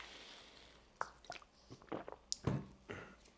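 sipping water

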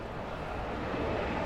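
loud airplane flying overhead

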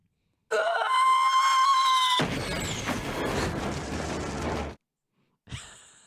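woman screaming

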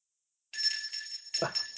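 bell ringing

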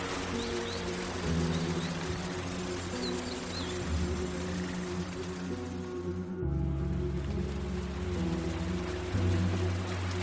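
rain falling

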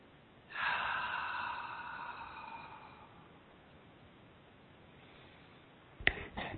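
two deep breaths

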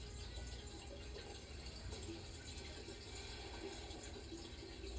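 waterfall sound effect

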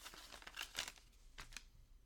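paper crumpling

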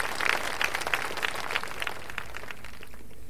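round of applause

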